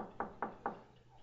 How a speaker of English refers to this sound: You see, Nicodemus shows up at night. Shows up at night knocking. Jesus, you're home?